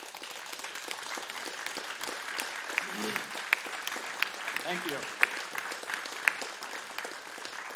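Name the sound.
audience applause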